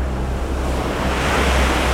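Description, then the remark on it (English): A steady wash of ocean surf rolling onto a beach, loud and continuous with a low rumble beneath it and no distinct breaks or voices. “there probably isn't a person on this beach who doesn't have something nagging at them in the back of their mind. What's swimming out there under the waves?”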